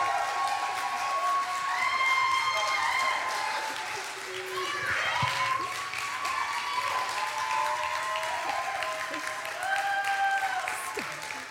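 Steady audience applause with scattered cheers and whoops rising above the clapping, welcoming the planting pastor of Nexus Church, sustained and fairly loud for the whole stretch.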